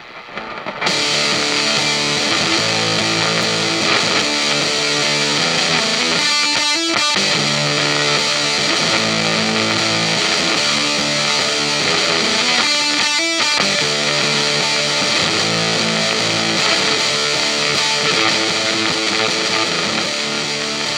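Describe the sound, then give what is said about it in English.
An electric guitar runs through a fuzz pedal, playing a sustained passage with a thick, buzzy, saturated tone. It stays loud and steady, with a couple of brief choppy bursts, and no voices. “The same passage of music with a fuzz pedal on instead sounds like this.”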